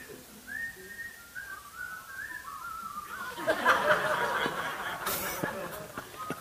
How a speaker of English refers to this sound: Okay, that's enough whistling.